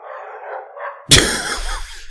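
Dogs bark: a softer, whiny yelping at first, then an abrupt loud bark that rings out and trails off, with no talking.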